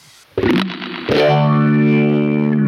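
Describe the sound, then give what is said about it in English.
Electric guitar played through a cranked-up Blues Driver overdrive pedal that distorts the high end with a gentle crunch: a gritty strummed chord at about 0.4 s, then a second loud distorted chord rings out and sustains to the end, with no talking. “So it's like a distortion pedal, but like the light version, so it doesn't like blow your ears out.”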